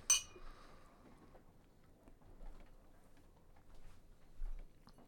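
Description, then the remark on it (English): Glasses of absinthe clink once in a toast right at the start, a bright chime that rings briefly before fading, followed by a few faint soft knocks and shuffles. “I brought in this bottle of absinthe that we're drinking”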